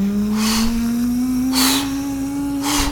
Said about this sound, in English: Why does it sound like a truck? I was doing the zipper. I don't know why it sounded like that. It sounds... Is the zipper motorized? Because the bag is so big!